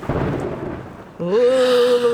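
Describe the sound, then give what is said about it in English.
Steady rain and low thunder rumble fill the first second, then a loud, drawn-out vocal tone cuts in over the lingering storm noise. “Rain and thunder sounds.”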